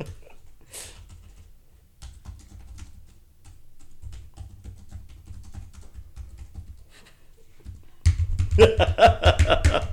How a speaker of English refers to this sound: Yep. I just want to make sure everyone could hear me typing.